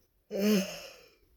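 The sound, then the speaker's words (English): A single breathy yawn: a sudden voiced groan that swells briefly, then trails off into a soft exhale, heard alone with no talking. “Another yawn.”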